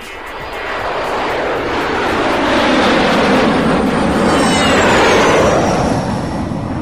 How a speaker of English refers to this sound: I'll tell you what. How about a fly past from the Red Arrows?